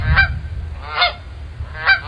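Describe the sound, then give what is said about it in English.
Three loud, nasal Canada goose honks ring out at a steady pace, each a short harmonic blast, over a low rumbling outdoor background with no talking; recorded by the National Park Service. “Let's go to the Canadian geese now.”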